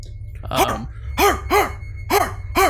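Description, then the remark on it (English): Two pit bulls on the other side of a fence bark in loud, sharp bursts, about five barks coming in rough pairs, over a steady low rumble. No one speaks. “You just hear as these two pit bulls are just...”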